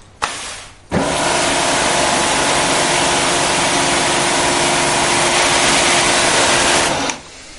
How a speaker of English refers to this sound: Pressure washers do an even better job, of course, especially on relatively large surfaces.